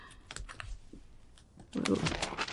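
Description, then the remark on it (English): Papery rustling as book pages are flipped while searching for Psalm 119 in the scriptures: a few soft scattered rustles, then a louder, busier flurry of page turning toward the end. “I'm not used to turning pages, I guess.”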